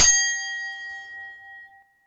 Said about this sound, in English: Cracking bell work. Oh, wiggly bell.